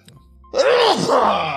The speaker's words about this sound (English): I'm going to sneeze. Hold on. Here's a big one.